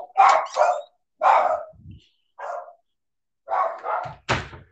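Several dogs bark loudly and repeatedly in sharp bursts, followed near the end by a solid thump as a door is shut on them to block out their noise.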